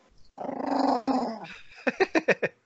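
A dog growls loudly for about a second, a rough, rising snarl, then breaks into a quick run of five short, sharp barks.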